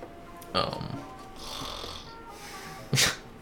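A person snoring: two short, rough snorting bursts about two and a half seconds apart, with a softer breathy rasp drawn out between them, fairly quiet overall.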